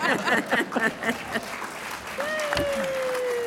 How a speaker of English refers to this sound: Applause for OSHA. We got that on tape, right? Awesome.